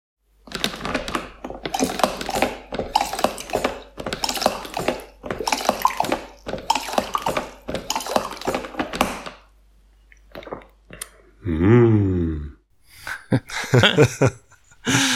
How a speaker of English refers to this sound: So in the beginning, it sounds a little bit like horses, but it doesn't make sense at all. So it sounds a little bit like mixing a cocktail. So is it right? Almost. It's my daily java. So indeed, it's a coffee dispenser, 1.8 liter.